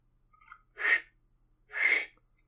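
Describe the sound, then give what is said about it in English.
Two breathy, hissing blasts of air, each under half a second, with only a faint whistle-like tone in them, as someone puts their fingers in their mouth and tries and fails to do a loud finger whistle. No talking. “I'm trying to learn how to whistle with my fingers, like putting your fingers in your mouth and whistling really loud.”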